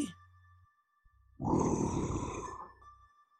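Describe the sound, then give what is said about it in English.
A single deep, rough growl from a castle guard, a big yeti-looking creature, outside a cell door, swells up suddenly and rumbles for over a second before fading, with a faint low hum underneath before and after it. No one speaks. “One of the castle guards, those big yeti-looking creatures, growled outside the door.”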